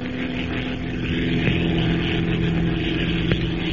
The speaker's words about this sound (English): With its twin motors purring in an even, steady rhythm, the gray transport plane slips through the cloudless night sky like some giant bird, leaving the rolling deserts of Arabia behind it and pointing its blunt nose toward Egypt.